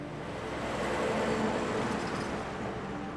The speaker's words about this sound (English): your big concern if your house has been there for 20 years and now there's a big road being built is, am I going to be able to sit in my garden and relax? Am I just consistently going to be hearing trucks and lorries drive past?